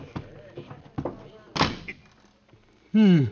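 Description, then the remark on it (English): A few wooden knocks and bumps lead into a firmer thud of a supply closet door shutting, with a voice briefly sounding right at the end. “Here's a door. Oh, for supply closet. Well, I'll have to squeeze in.”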